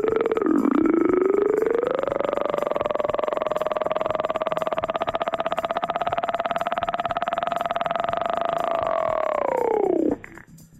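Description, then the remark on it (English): A voice imitates a helicopter during a phone call with a steady buzzing drone, pulsing rapidly like whirring blades. It dips in pitch at the start, holds for about ten seconds, then cuts off abruptly. “You don't like helicopter noises?”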